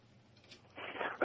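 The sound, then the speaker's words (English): A single sneeze during a radio interview, from someone getting over a cold: a rising breathy intake that builds into a noisy rush, then ends in a sharp, loud burst. No one speaks. “Bless you.”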